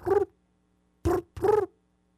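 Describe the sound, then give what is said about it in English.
A voice imitates a cricket with three short, buzzy vocal chirps at a mid pitch: one, a pause, then two close together, fairly loud with nothing else behind them. “That's a cricket.”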